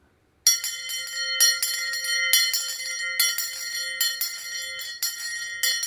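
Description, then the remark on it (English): A handheld school bell rings loud, shaken in a steady rhythm of repeated clangs that blend into a continuous bright, metallic ringing for several seconds, with no voices, at a graveside at the close of a funeral service. “And I stood there at the side of that grave as I closed that service, and I took my school bell, and I just rang the bell.”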